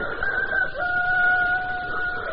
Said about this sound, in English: the cock crew.